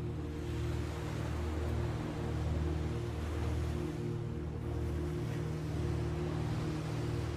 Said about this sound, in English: we were so relieved when we saw those little waves rolling into shore, because otherwise there would have been nothing for the light to hit.